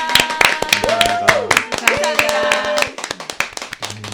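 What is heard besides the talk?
applause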